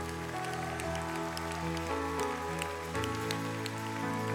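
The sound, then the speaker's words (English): Dense, continuous applause from a crowd, a steady patter of many hands, over sustained, held musical tones, with no one talking. “I think you should just keep clapping for a minute.”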